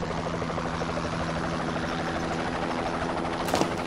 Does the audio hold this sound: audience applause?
no